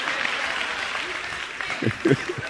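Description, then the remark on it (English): An audience claps steadily in a dense, sustained wash of applause, with a few voices briefly rising over it toward the end. “Whatever, Sarah, mothers, y'all should be applauding me right now because I'm about to help you.”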